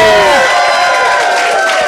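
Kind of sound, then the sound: crowd, audience applause and cheering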